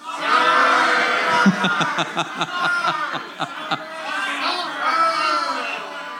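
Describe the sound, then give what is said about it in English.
A live audience in Victoria shouts loudly in response to being asked whether they want to see Toronto and the Toronto Maple Leafs thrive or suffer, many voices overlapping, with a run of rhythmic, choppy bursts like laughter or jeers in the middle before the yelling swells again. “It sounds like there are people that are really taking great delight in the suffering of the Toronto Maple Leafs.”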